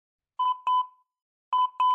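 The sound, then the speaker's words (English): A phone's security-camera notification alert sounds twice, each time a pair of quick electronic beeps with a short pause between, clear, with no one talking, after 2 a.m. at night. “I'd only slept a little over an hour before I was woken up by an alert on my phone, a notification for the security camera.”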